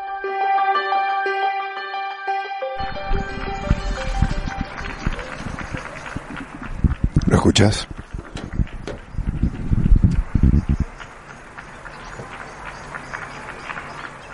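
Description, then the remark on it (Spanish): Many people in a Madrid neighbourhood, staying home during a national emergency, clap together in a dense, crackling burst of applause lasting around eight seconds, then it thins out. A short tonal musical passage comes before it, and a voice briefly speaks. “Es el aplauso. El aplauso de Madrid, de mi barrio, de muchísimas personas que hace 2 semanas o más, cierro la ventana porque hace frío, que no salen de su casa porque estamos en emergencia nacional, porque toca cuidarse”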